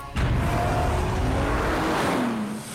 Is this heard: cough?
no